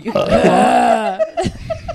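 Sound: burp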